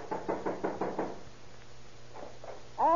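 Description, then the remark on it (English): Loud, rapid knocking by police officers on a suspect's apartment door in Oakland, a quick run of about six sharp raps, then a pause and two more knocks before a voice begins at the very end. “Better try knocking,”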